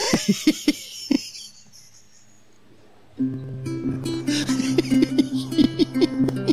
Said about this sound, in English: Listen to those seagulls.